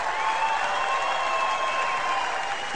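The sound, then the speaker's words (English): A large audience applauds a comedian steadily, a dense, continuous wash of clapping that holds at an even, fairly loud level for the whole stretch, with a faint tonal hum running underneath and no talking. “All right, well, he's getting a great reaction.”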